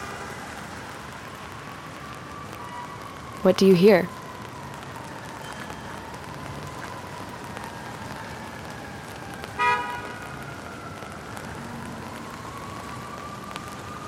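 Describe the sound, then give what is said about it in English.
Steady rain patters on an umbrella at the corner of Park Avenue and East 95th Street, a dense, even hiss overhead. A voice briefly speaks early on, and a faint car horn sounds midway through. “You might notice the sound of the rain against your umbrella.”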